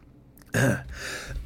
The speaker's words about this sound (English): Sorry, that's bad. I should probably cut that out, right? I should probably cut out a cough.